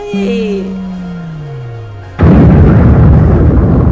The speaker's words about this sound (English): I can't believe it. It happened. It's the most beautiful explosion I've ever seen.